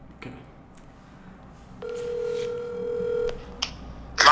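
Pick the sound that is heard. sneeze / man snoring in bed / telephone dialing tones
telephone dialing tones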